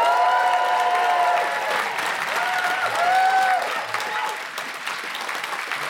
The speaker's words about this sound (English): Please give a round of applause for comedy royalty, Ed Byrne!